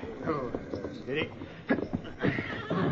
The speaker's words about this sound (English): And here's the horse that carried him.